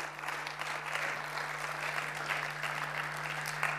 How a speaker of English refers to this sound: Why don't we clap a little bit louder for all three of us speaking tonight, because that was absolutely incredible.